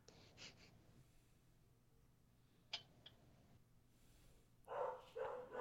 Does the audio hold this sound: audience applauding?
no